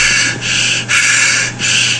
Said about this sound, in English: And then now we're going to watch an inexplicable video of Rick Ross. Hey, so Rick Ross breathing.